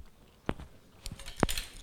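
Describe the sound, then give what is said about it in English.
Someone crunches on an insect: two sharp, crisp cracks about a second apart, with softer crackly chewing between and after them. Fairly quiet, with no voices. “Oh, I can hear the chewing. The crunching.”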